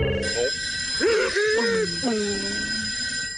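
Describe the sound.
A telephone in the White House rings at 3 a.m., steadily and insistently, its bright bell tone sustained throughout while a voice speaks over it.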